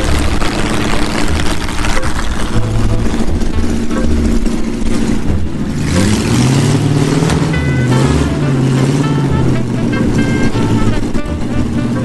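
The engine of a vintage car, driven by its owner onto the track to go up the test hill, rumbles loudly, idling steadily before revving up and pulling away, its deep tone rising and wavering as it accelerates.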